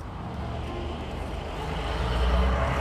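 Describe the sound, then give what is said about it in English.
Huge heavy trucks, loaded with some kind of liquid, rumble past in town traffic, a deep droning engine growl that steadily grows louder over a few seconds, with no voices. “Huge, weird trucks were rolling through town.”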